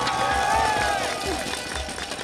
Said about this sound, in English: There's so much energy in this place right now. The crowd's got athletes coming through. How can an athlete not love this? You look up the road, there's people everywhere. Athletes are coming through. Everyone's cheering them on.